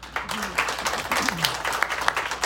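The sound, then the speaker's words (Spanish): An audience applauds to welcome a candidate from Jalisco, with dense, steady clapping for a couple of seconds, moderately loud, while a voice speaks briefly over the crowd. “Y recibimos también, y le damos un aplauso, por favor”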